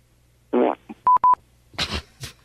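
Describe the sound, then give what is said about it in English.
A short, buzzy fart from a caller comes through a tinny phone line after a Saturday-night shout-out to his wife, followed by two sharp electronic beeps and a couple of brief, noisy rustling bursts. “He said he loves his wife and then farted into the phone.”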